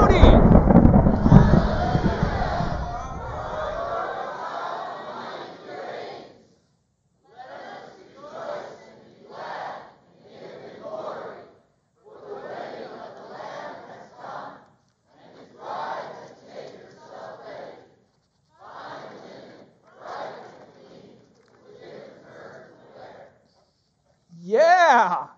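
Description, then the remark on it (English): A large seated audience, cued to act out a great multitude celebrating, erupts in a loud, rumbling roar of shouts that lasts several seconds, then breaks into scattered bursts of cheering and raised voices with short pauses between. “This is the hearing of the sound of what sounded like a great multitude, like the roar of rushing waters, and like loud peals of thunder.”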